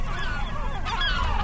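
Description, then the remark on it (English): A dense chorus of great black-backed gull and herring gull calls, overlapping wails and yelps from many birds at once, with steady low rumble of wind or surf underneath. “You're hearing great blackback gulls and herring gulls.”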